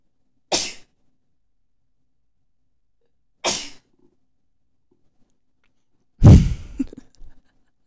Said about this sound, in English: So I'm going to sneeze.